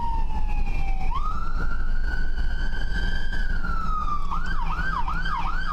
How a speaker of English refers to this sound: Pull over. So all you can hear is a siren. Pull over. You can hear the siren.